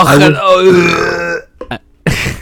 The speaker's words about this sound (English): That was like a burp